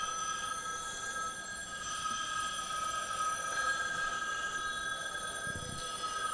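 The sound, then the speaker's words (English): A telephone bell rings continuously, a bright, shimmering metallic jangle that holds steady at a fairly loud level throughout, with no voices over it. “There's no phone ringing, dammit! There is no phone. Ringing.”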